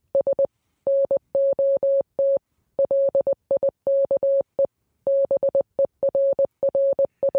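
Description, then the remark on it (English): A steady, mid-pitched electronic tone keys on and off in Morse code, mixing short dots and longer dashes in grouped bursts with brief gaps between them. Clear, with no voices. “You think this is just random beeps?”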